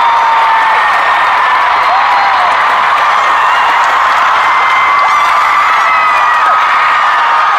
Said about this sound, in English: This is a snippet of how the crowd sounded at … when I was there. SoFi Stadium in LA.